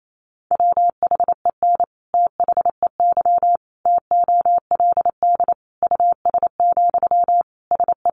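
A steady mid-pitched tone keyed rapidly on and off in quick dots and dashes, sending a Morse code sentence at 28 words per minute, built from the top 400 words, with short gaps between words, heard alone without voices.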